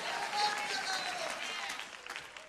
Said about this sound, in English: Oh, you ought to clap your hands unto the Lord.